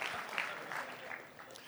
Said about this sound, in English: come on, put your hands together, Angelinos. Come on, let's clap. Even if you don't care about baseball, clap because it feels good, huh?